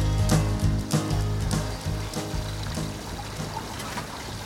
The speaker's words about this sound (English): Grab a bucket and help me bail the water out of the cabin of the boat. We're on Israel's rickety and sinking boat in the middle of the Albemarle Sound, somewhere near Kitty Hawk, North Carolina.